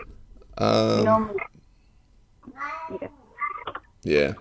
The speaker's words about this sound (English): The cat's meowing in the background. He wants to go out, but I don't know if you can hear that.